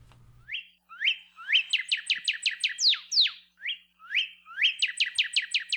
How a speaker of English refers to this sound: Northern cardinals are among the most common and recognizable birds in towns, backyards, and even some forests across Hawaii. Introduced to Hawaii in 1929, they're also one of the most abundant birds in North America,